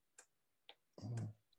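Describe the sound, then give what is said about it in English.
A small click lamp is switched on: two crisp taps spaced apart, then a brief duller thump with another click and a faint final tick, quiet with no talking. “wife got me one of those little click lamps that I've been using for.”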